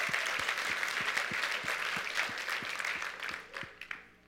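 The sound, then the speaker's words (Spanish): An audience applauds in a dense, steady wash of many hands clapping, with a regular low thump pulsing underneath, before the clapping thins and fades out over the last second. “Dar un aplauso, Señor, por la vida de ellas.”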